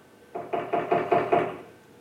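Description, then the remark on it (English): Six firm knocks on a wooden door in a quick, steady rhythm, clear, with no voices, fading into a brief hollow resonance afterward. “In Revelation chapter 3, Jesus said, "Look, I stand at the door and knock.”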